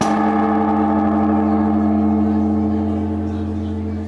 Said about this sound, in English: on the grounds of the Zojiji Temple in Tokyo, priests and members of the public took turns swinging a wooden pole against the huge bell to ring in the new year.